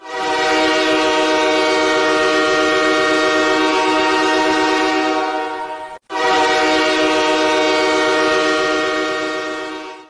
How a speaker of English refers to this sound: So, yeah, that's a huge train horn in your ear right there. I hate that noise with a burning passion. I swear to you, it is the worst.